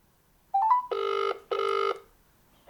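telephone ringing

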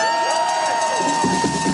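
protest crowd cheering

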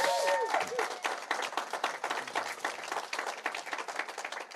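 audience applause

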